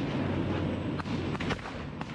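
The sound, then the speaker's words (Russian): Tank cannon fire in combat, the tank shooting at enemy positions pointed out by assault troops in a tree line: a few sharp, heavy blasts break through a constant loud roar of engine and battlefield noise, coming close together in the second half, with no voices. “Наши штурмовики в лесополосе указывают танку, где еще сидит враг.”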